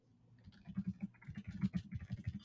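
Rapid, uneven clicking of fingers typing on a computer keyboard while pulling up names, a steady flurry of soft keystrokes with nothing else going on.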